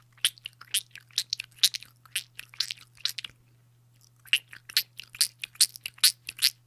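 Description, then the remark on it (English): A voice imitates the squeaking of foam shoes worn barefoot while walking, with a rapid series of short, sharp, high-pitched squeaky bursts in two quick runs separated by a brief pause, with no talking and a low steady hum underneath. “I'm like, goddamn squeak shoe.”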